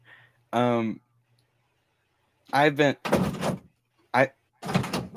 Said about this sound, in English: He's trying to open the door.